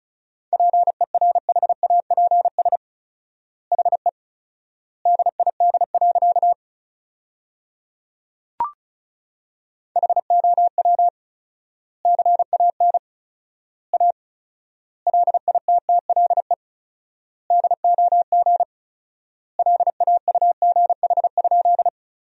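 Fast Morse code at 35 words per minute with 4x word spacing, sending sentences from the top 500 words: rapid beeps on one steady mid pitch, grouped into words with long silent gaps between them, plus a single brief click partway through.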